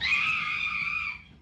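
A woman in a film scene lets out one long, shrill scream, loud, holding steady for about a second before it cuts off, with no talking around it; Needy screams on finding Jennifer waiting in her bed.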